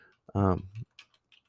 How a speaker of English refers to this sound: I'm trying to talk and type at the same time, and I'm typing bullshit. Sorry.